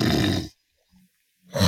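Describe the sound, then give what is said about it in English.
A person imitates snoring through the nose: a loud, rough, low rumbling snore, a pause with only a faint brief murmur, then a second harsh snore starting at the end. “Now what I'd like you to do is to snore through your nose.”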